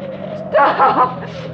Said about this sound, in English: Oh, a car. Please stop. Oh, please let it stop. Please, please stop.